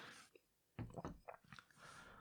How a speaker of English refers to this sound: Ah, really needed a sip of water there. Podcasting really dries your mouth out.